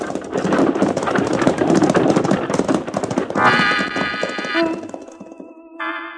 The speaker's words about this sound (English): the Arbuckle Kid straightens up from his crouching position, slaps the near horse on the rump, and triggering his shotgun, sends the driver and his team off toward the nearest town in a cloud of dust.